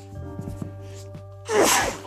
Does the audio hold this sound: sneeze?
yes